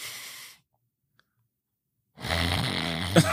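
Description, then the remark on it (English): A voice imitates loud snoring: a raspy snore cut off at the start, a second of silence, then a longer, rattling, throaty snore. “because me, when I snore, it's when I'm in deep sleep, an hour and a half later.”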